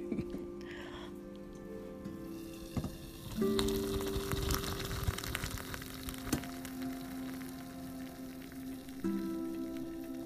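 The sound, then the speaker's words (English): Coffee pouring into a cup with a bit of cream and sugar, a steady trickling hiss over a low, steady machine hum, with a louder splashy stretch early on and a few sharp clicks. No one speaks. “Oh, the beautiful sound of coffee as it pours the fresh aroma into my cup with my lotta bit of cream and my lotta bit of sugar.”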